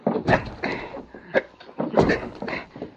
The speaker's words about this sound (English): All we have to do is give a good shove against the back door of the office. I got it fixed so it'll bust open easy. Let's go. All right, now all together, let's shove against the door.